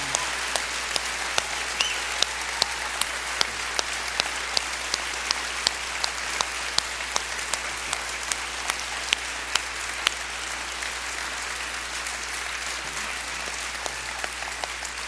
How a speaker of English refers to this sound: before I say anything else, I want us all, every campus, everybody right now, I want you guys to give my mom and my dad the biggest round of applause, the most honor you can possibly give them for all that they've done.